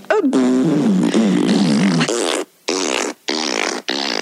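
A long, loud, wavering fart with a buzzing, pitch-sliding tone, followed by three or four shorter hissing, breathy bursts separated by brief gaps of silence.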